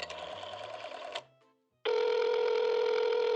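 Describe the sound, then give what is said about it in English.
A telephone call being placed to Johnny's Lounge: a burst of dialing tones, a brief pause, then a steady, loud electronic ringback tone droning continuously, with no voices. “All right, I want to give Mickey Cohen a call.”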